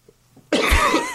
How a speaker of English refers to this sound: Oh, he coughs now. Yeah, I coughed. I'm still fighting off a cold.